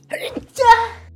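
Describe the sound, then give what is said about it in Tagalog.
A single sneeze set off by smelling something: a short voiced catch of breath, then a louder, breathy burst that trails off over about half a second. “Naamoy ko to, tapos nahatching ako.”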